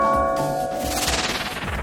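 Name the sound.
bells ringing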